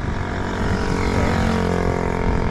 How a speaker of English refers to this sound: A lot of motorbikes around here.